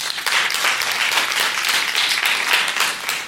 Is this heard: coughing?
no